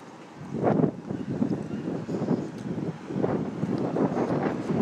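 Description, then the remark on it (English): Heavy outdoor wind buffets a microphone with its windscreen removed, in irregular low rumbling gusts, surging and easing continuously for several seconds with no voices present. “It's been incredibly windy out here. Incredibly windy. I don't know if you could hear any of that windy stuff.”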